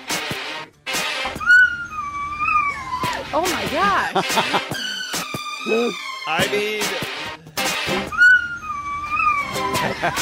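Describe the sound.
A dog named Riley howls and yowls in wavering, drawn-out tones over an upbeat pop song, its pitch sliding up and down with the music while people exclaim briefly.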